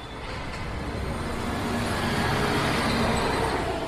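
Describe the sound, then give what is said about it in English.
Steady, dense roar of road traffic with buses idling and pulling away at a central bus station exit, recorded at 10 p.m. from a living room window directly across from the exit, a continuous engine rumble and hiss that barely varies in loudness, with no voices. “This is a recording from his living room window at 10 p.m.”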